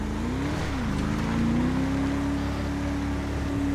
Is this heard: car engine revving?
yes